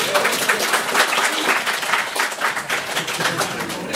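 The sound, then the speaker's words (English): A steady burst of applause, many hands clapping in a dense, crackling wash that holds at a fairly loud, even level for several seconds with no voices on top. “Guys, I think he deserves a round of applause for that.”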